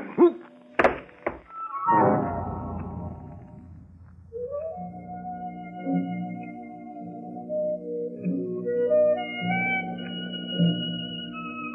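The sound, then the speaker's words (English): A few heavy, dull thuds land in quick succession as someone is hit on the head and knocked out, then a booming impact rings out and fades, giving way to sustained, wavering droning tones like a dazed ringing in the ears. “If you're hit on the head hard enough, you get knocked out.”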